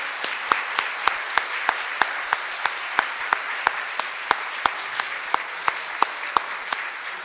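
A crowd applauds steadily for several seconds, a dense wash of clapping with sharp, evenly spaced claps standing out in a regular rhythm throughout. No one speaks.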